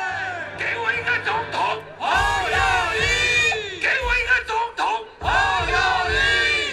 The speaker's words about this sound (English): You can hear the guy on stage, he's saying, "Give me a president," and the crowd is saying, "Ho Yo Yi,"